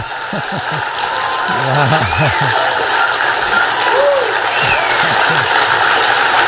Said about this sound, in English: That was incredible. He got a major applause for that.